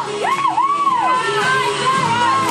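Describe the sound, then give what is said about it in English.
Excited children scream and cheer as performers run into a fort after finishing their performance, high voices rising and falling in sustained whoops over a dense, continuous crowd din, loud throughout. “And they all ran into the fort as they finished to the enthusiastic screams of their peers.”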